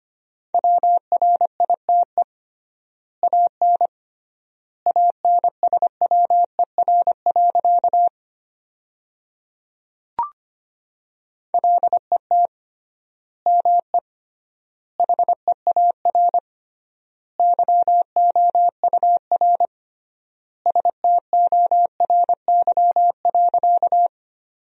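Rapid Morse code at about 25 words per minute, sending sentences made from the 300 most common words with triple word spacing: a steady mid-pitched tone keyed in quick dots and dashes, grouped into bursts with long gaps between words and one brief click partway through.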